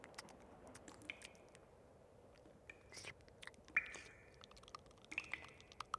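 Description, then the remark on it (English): Soft, wet squishing and faint dripping clicks as a soaked piece of paper is lifted out of water, quiet, with a few sharper slaps near the end and no talking. “Let me take it out of the water just, here.”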